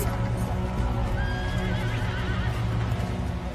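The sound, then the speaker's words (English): Horses being brought ashore whinny with wavering high cries over a steady, loud wash of surf, while hooves clop and splash through shallow water as they come through the surf onto a beach at Mill Bay. No one speaks. “we can picture them heaving munitions onto the beach, cannons, horses coming through the surf.”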